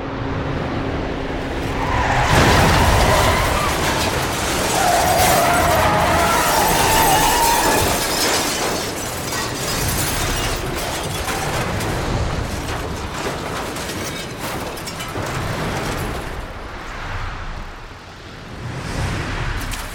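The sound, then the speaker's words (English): A bus skids into a tunnel with a tire screech as an avalanche hits with a loud, roaring crash and heavy rumbling surge, then the din slowly settles over several seconds. “Only half the bus made it into the tunnel before the avalanche hit.”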